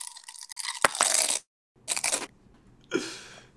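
Loud crunching of crisps being bitten and chewed, in three bursts separated by short pauses, with crackly bright texture and no talking.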